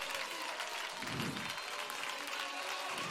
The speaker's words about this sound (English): I wish somebody would clap their hands and don't worry about anybody next to you.